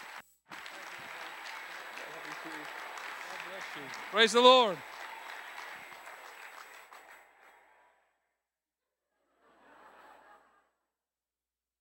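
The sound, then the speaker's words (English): A crowd applauds steadily for several seconds, broad dense clapping that fades out, with a single voice calling out briefly over it; a faint short burst of noise follows after a pause. “Boy, things are really bad when you got to pipe in some applause from the outside.”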